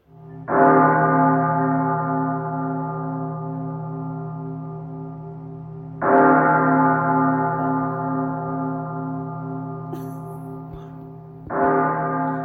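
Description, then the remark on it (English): A deep bell tolls three times, each strike ringing out loud with a long, slowly fading hum before the next, about six seconds apart. No voices accompany it. “At the third toll of the devil's bell, begin the film.”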